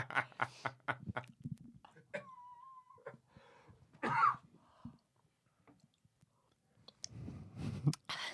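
Quick wet clicking sips, followed by a sudden harsh cough and a later burst of sputtering coughs, as if someone choked on water while drinking.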